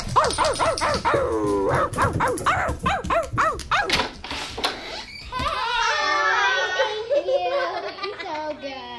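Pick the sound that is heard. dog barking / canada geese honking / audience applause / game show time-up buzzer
dog barking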